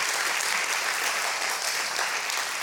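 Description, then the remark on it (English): An audience claps steadily, dense overlapping hand claps forming a loud, continuous wash of applause with no voices standing out. “Can you clap your hands for that right now?”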